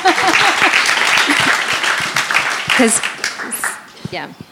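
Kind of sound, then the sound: crowd, audience applause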